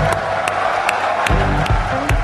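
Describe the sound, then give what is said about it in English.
A boisterous crowd cheers and applauds in a dense, continuous roar as the President of the United States is introduced, with sharp claps and whoops standing out above the steady wash of noise throughout. “There is nothing like standing in front of a boisterous crowd coming down the stretch of a presidential run.”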